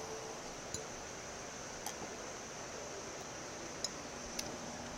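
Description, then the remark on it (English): A few faint, sharp clinks, like glasses tapping together in a toast, land at irregular moments over a steady background hiss. No one speaks. “Let's take another drink. Cheers, everybody.”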